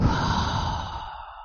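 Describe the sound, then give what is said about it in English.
A long, steady breath pushed out through the mouth while relaxing the stomach muscles during a breathing exercise, breathy and fading gradually over about a second and a half with no talking. “And then out through the mouth and relax the stomach muscles.”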